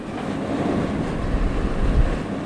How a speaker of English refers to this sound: This is mostly a recording for you guys to hear how noisy it is in my room. Let me take you on a tour of the sounds. So this is the air conditioning unit.